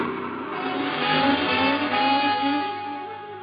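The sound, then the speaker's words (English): A car engine revs and accelerates as the car runs a traffic light, a steady, fairly loud droning roar that swells slightly midway and holds for a few seconds with no voices. “I ran the light, noting several figures in my rearview mirror as they stopped running”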